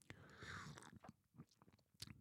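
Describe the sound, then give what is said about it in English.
A quiet slurp as someone sips espresso from a cup, followed by a few soft mouth clicks and a swallow; no talking. “I've been talking now for 8-9 minutes and I forgot to take a sip of my espresso.”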